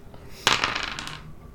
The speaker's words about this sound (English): Did you roll him? Is it lower than 61? 5? I think I rolled the wrong dice.